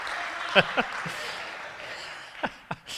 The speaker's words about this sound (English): And you better clap for him as well.